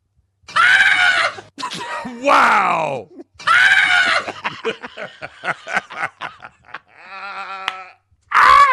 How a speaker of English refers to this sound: Laugh Bird.